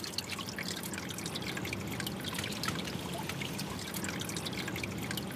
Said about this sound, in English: So it's still here, but it's this hole in the brick wall drains off the stormwater. You can hear it.